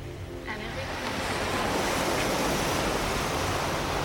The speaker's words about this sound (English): ocean.